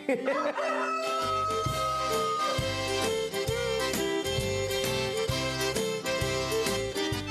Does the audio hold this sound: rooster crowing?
yes